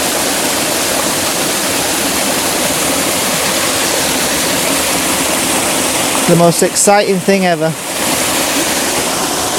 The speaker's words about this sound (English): it's only a very small waterfall and there is a big rowan tree in the way, but there's every chance that I'm able to make an image and it'll be an image that nobody's seen, so that's good. Hidden mountain waterfall.